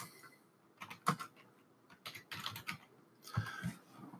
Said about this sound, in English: For this example, I've typed in a search term. Well, I'll type in, we've been talking about state inspections in Virginia a lot. Pardon my typing.